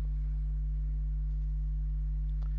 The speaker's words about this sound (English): hearing a hum, some kind of something feeding back or something. I'm not sure what that is.